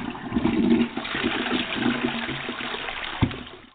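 A toilet flushes with a steady rushing, gurgling wash of water that holds fairly loud throughout, with a brief sharp clunk near the end as it starts to taper.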